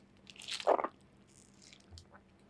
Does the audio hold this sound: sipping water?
yes